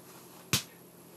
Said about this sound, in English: Sorry if you heard that noise. Sometimes with the air conditioning, it makes a really weird noise sometimes.